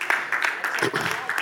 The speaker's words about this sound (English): See how quiet them claps are?